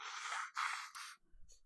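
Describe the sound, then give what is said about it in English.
Someone blows their nose in three quick, forceful bursts of breathy, rasping noise, the second the strongest, then the sound drops away to near silence with a faint low rumble. “It's gonna blow my nose. I'm really sorry.”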